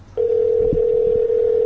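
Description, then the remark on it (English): A steady, unbroken telephone dial tone as a call is placed to someone who does not answer; it starts abruptly and holds at one even mid pitch, loud and continuous, with faint low rumbling and a soft knock beneath it. “Who else do I have in here that I could call?”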